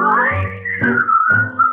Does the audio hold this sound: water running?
no